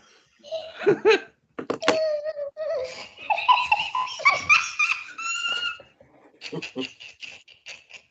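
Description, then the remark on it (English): Morty, a dog, whines and yelps excitedly in a rising, wavering series of high howls, fairly loud, broken by short pauses and ending in quick squeaky cries. “He's whipped my dog up, Morty.”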